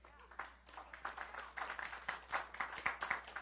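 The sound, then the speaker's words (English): A soft, scattered golf clap: irregular light polite claps from an audience, steady for a few seconds and fairly quiet, with a faint murmur of voices mixed in. “Thank you for golf clapping, though.”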